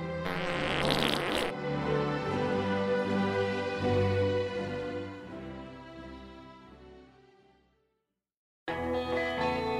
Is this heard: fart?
yes